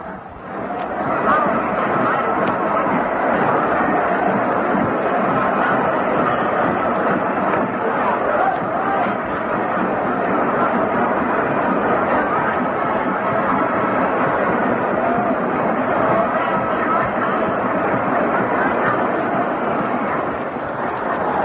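The Notre Dame marching band parades at halftime of a football game against Army, marching beneath the Irish goalpost and playing a steady tune, muffled and blended into a dense roar from the huge crowd, continuous and loud throughout with no talking over it.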